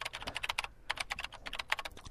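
Rapid, hollow-sounding computer keyboard typing as someone types in an address, with irregular clusters of clicks, moderately loud, with a brief pause near the start. No one speaks.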